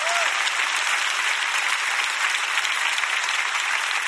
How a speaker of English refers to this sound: Everybody who came to church physically, clap. I am applauding you for being here.